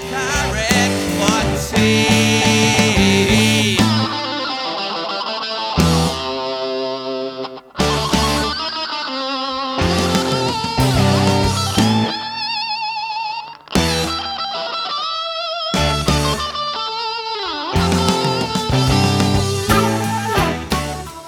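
A loud electric rock guitar solo with echo, its distorted sustained notes bending and wavering over the band, which drops out briefly a few times, leaving the lead guitar ringing alone.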